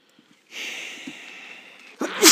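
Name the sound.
sneeze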